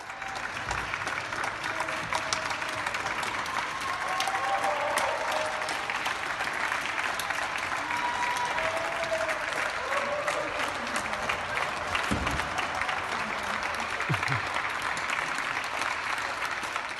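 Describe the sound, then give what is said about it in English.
Sustained applause from many neighbours clapping outdoors for carers in London, UK, at 8 p.m. on a Thursday, steady and dense throughout, with scattered faint cheers and voices carrying across the street in the background. “So that was this week's Clap for Our Carers live from London.”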